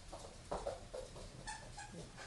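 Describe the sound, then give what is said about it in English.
A dog named Mala whimpers softly while her squeaky toy lets out a few short, high-pitched squeaks, all fairly faint and lasting only a couple of seconds. “She's found another squeaky toy.”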